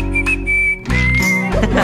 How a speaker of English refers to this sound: I'll do my best to whistle up a brand new melody.